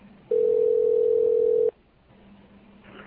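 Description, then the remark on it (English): A single steady electronic ringback tone from an outgoing phone call sounds for about a second and a half, loud and clear over faint line hiss, then cuts off. “Oh, I hope he answers.”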